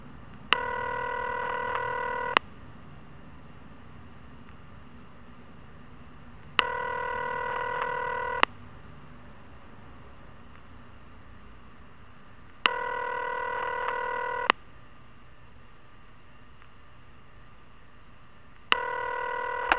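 A telephone rings four times in a steady rhythm on a call to Paulie's personal phone, each electronic ring lasting about two seconds with longer silent gaps between. The ringing is clear and moderately loud, with no voices and no answer.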